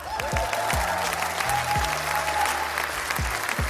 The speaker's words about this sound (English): Round of applause for Switzerland. I know this is not the award of the day, but wow.